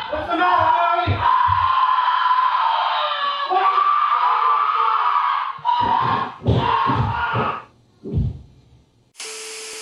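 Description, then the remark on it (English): A loud, distorted demonic scream from a horror film holds for several seconds, then breaks into ragged shrieking bursts before cutting off, followed by a brief harsh hiss. “When I think of a demonic scream, I hear that scream because just distorted enough that you can tell that it's inhuman”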